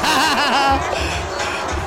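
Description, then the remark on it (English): A large stadium crowd at an LA Rams game booing Kawhi Leonard loudly, a dense roar of many voices with drawn-out, wavering boos rising above the noise before settling into a steady jeering din. “That is Kawhi Leonard getting booed at... LA Rams? LA Rams game.”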